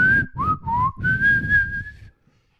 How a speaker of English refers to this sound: You want me to whistle a song? Yeah, I'd love that.